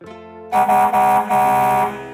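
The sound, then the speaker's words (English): A 60-ton diesel haul truck's air horn honks loudly, a brief soft tone swelling into several long, blaring blasts with short breaks between them. No one speaks. “kept Mr. and Mrs. Johnson, as well as the rest of Shackelford's Folly, up all night with his honking”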